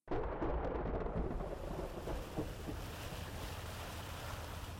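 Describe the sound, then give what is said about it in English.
A boat's engine rumbles loudly and steadily as the boat starts, mixed with the rushing wash of ocean waves and wind, holding a constant roar for several seconds with no voices. “So, I'll go start the boat then?”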